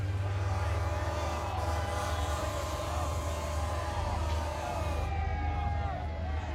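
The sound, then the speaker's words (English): Boats overloaded with fleeing people pulling out from the docks of a harbor, with a steady low engine drone and churning noise, layered under a loud, dense wash of crowd babble and shifting tonal whines. “All manner of boats overloaded with fleeing population pulling out from the docks.”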